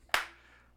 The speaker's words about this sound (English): Will you stop clapping?